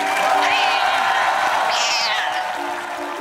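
A large crowd claps and cheers steadily for a Conan O'Brien field crew member, a dense roar of applause with whoops and a rising shout or whistle cutting through midway, easing slightly toward the end.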